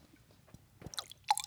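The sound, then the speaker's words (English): Quiet, brief liquid sounds: a few soft wet splashes of water trickling into a glass, ending in a sharp, ringing drip. No one speaks. “That's my water. It's filling up.”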